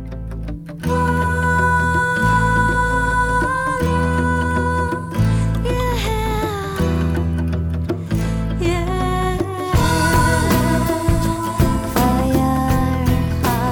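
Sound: song played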